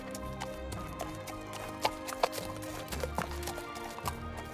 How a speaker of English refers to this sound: So as you guys are trotting along, you hear the sounds of a horse coming up behind you.